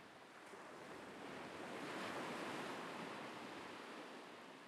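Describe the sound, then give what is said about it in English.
Gentle ocean waves wash onto a beach at the water's edge, lapping softly up to a person's ankles, in a steady, broad hiss that swells slightly and then eases, continuous, with no voices present. “As I reached the water's edge, I let the waves lap softly up to my ankles.”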